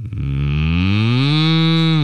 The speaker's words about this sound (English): Yeah, and then from 8 to 9, it's just cows in a pasture. It's like the Yule log, but they just show you cows in a pasture.